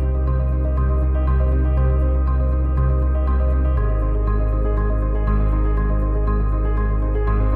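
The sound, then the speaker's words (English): Brooding dramatic music plays without any voices: deep sustained bass drones under layered tones, with a heavy chord shift about halfway through, holding steady and fairly loud throughout. “Ooh, such dramatic music, isn't it?”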